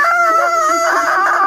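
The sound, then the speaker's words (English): A person imitates a monster's roar as a character flips and lands on its back, with one loud, sustained, strained vocal cry lasting about a second and a half, its pitch wavering and rising slightly toward the end. “Okay, it starts roaring it.”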